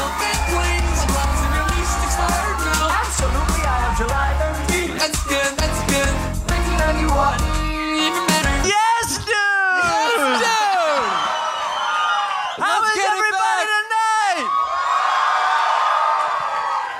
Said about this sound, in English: Holy shit, man. Who got the bigger applause, dude? Everybody wants to know. It's not a competition.